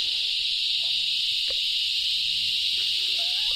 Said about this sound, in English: I'm cringing holding my earphones right now because the cicadas are so loud. Oh, so loud.